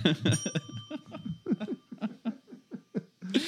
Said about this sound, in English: You got to get that bell closer to you, man. I don't want to be too up front in the mix with my bell.